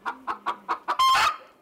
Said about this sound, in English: The blue hen chicken is the state bird of Delaware.